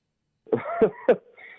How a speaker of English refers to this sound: Fake laugh. Fake laugh. Fake laugh. Yeah. Fake laugh. That's a fake cough. Fake cough, fake laugh.